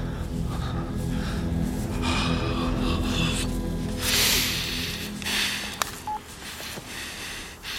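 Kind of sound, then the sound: signal or alarm, telephone keypad dialing tones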